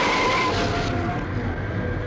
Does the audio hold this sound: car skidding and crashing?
yes